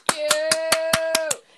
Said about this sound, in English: a round of applause. Oh my God. I'm so proud.